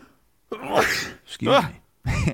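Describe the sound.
A loud sneeze bursts out with a strained voiced buildup, followed by a couple more short, forceful noisy bursts in quick succession.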